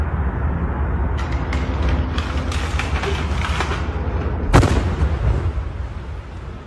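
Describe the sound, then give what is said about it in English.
Over a steady, noisy rumble, a house in a residential neighborhood explodes in a single loud, massive blast with a sharp crack, recorded from far away, then fades into a lingering roar. No voices are clear. “In this one, you can hear police issuing orders to him to come out before the blast goes off.”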